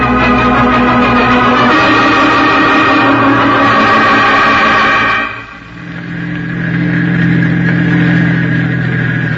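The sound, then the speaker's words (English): A car engine hums steadily with strong low harmonics, then dips in loudness and pitch around the middle as the vehicle slows, settling into a lower, softer drone. “You're slowing down. Are we near the cottage already?”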